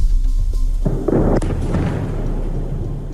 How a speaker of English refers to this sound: In Syria's major port city of Latakia, the sound of airstrikes thunder in the distance as fireballs light up the night sky.